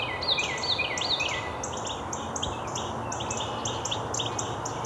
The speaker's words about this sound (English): Another Carolina wren up ahead. Here's our Carolina wren.